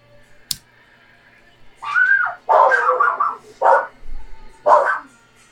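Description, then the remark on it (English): Several short, loud barks and yelps from dogs in uneven bursts, one drawn into a whiny, whistle-like howl, with a sharp click at the start and no talking. “Oh, we got dogs barking.”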